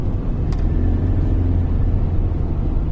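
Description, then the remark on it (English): A car's exhaust gives a steady, low, fairly smooth rumble while driving, holding an even drone for the full three seconds with no voices present. “It's not roughy enough, the exhaust, is it? You hear it, but it's not noticeable, is it?”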